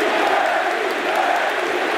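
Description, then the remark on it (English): A large crowd chants a name in unison, a dense, steady roar of many voices that holds at a constant loud level for the full two seconds, with no single speaker standing out. “It sounds like they're chanting Eddie.”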